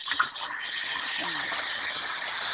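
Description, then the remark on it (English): Water runs in a steady, unbroken rush, like a tap left on, with a faint murmur of voices partly buried beneath the hiss. “someone is doing, I don't know, I can hear water.”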